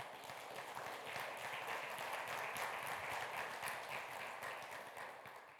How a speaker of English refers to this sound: We ought to give the Lord Jesus a big applause. Amen? He's alive.